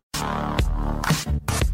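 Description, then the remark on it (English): A loud, bright bell rings out, its tone sustained and shimmering, with a few fresh strikes adding accents over a couple of seconds; no one talks. “Hey, there's the bell.”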